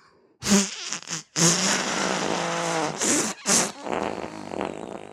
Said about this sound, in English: I'd like to point out that wasn't actually like a facsimile of farting. That was quite impressive.